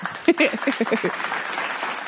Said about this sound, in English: Okay. Like, round of applause.